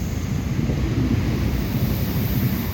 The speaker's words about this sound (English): Oh, there's a train going by.